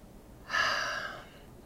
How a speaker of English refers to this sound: Okay, in through the nose. Out through the nose. In through the nose. Out through the nose.